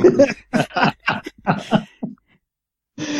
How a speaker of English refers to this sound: You're coughing your guts up.